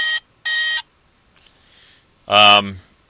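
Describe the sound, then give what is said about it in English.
A toy communicator, sounded by pushing a symbol cut out in its back, gives two short, bright electronic chirps in quick succession, then after a brief pause a louder, fuller chirping tone rings out, clear with no talking; the tone means someone is calling, like a cell phone ring. “There's a symbol cut out in the back of the communicator that when you push it, you get that was the sound that the communicators would make when it meant, somebody's calling them.”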